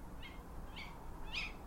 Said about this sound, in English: So the sound that you can hear in the distance is a tawny owl.